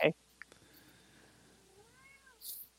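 A female cat standing on the back of a chair gives a long, drawn-out meow for attention, fairly quiet and wavering in pitch, rising then bending down at the end, framed by brief louder noises at the start and finish.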